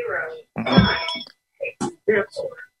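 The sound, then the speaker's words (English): A phone rings briefly with a bright, tonal ringtone burst from an incoming robocall, followed by short snippets of voice-like sound. “Silence my phone for a second.”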